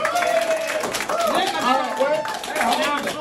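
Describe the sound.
An audience claps and cheers, with whoops and shouting voices rising and falling over a steady, dense wash of applause for about three seconds.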